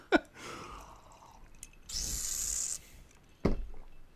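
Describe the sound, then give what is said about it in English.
A long, slow sip of a drink: a breathy, hissing slurp lasting about a second, with short sharp clicks before and after. Fairly quiet, and nobody talks. “Time to drink. Long, slow sipping.”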